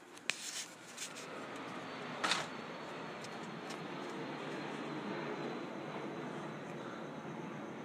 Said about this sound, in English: I'm going to go outside. I can smell the wind, but also there's an airplane.